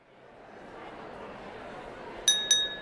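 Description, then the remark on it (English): Two bright clinks of glasses raised in a toast ring out in quick succession near the end, their tones lingering briefly over a steady murmur of background crowd noise. “Let us toast once more. Raise your glass, and this time, imagine how it will impact your day.”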